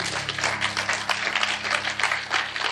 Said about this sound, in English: Clap your hands for God.